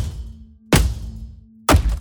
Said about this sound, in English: But no matter how hard I threw the hammer into it, it didn't so much as chip.